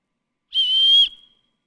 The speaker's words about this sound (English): If I couldn't whistle, I would need some help whistling. And I could use this tool here. That didn't work.